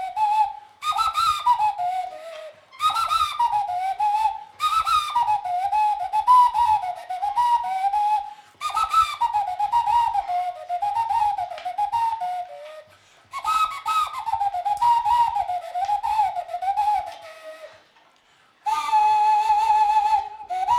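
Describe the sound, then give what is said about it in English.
Shabaka plays a bone flute, working out what kind of melody it can play: a breathy, wavering melody in phrases of rising and falling notes, separated by short pauses, ending on a long sustained tone. No one speaks. “So has this gone into the horse's bones of flutes?”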